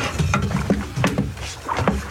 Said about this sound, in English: Oh, the boat is ready. Quickly, Master. Get into the boat, and we shall cast off. Get in, Matthew. Hurry. All right. Andrew, cast off.